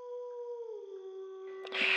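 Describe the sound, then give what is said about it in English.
A wolf lets out one long, sustained howl that sinks slightly in pitch, clear, before a rough burst of noise cuts in at the end. “Ugh, not sure if wolves and bears are an upgrade.”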